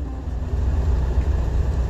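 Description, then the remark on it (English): A vehicle rolls along with a steady, heavy low rumble of road and engine noise, broken by a few uneven thumps and jolts as it rides over bumps. No one speaks. “sorry folks, had a bunch of bumps.”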